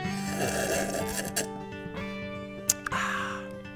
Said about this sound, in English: Got a little cough there. I've done that forever.